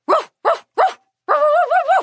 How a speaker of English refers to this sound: That's amazing. The sound of zebra is just like puppy barking.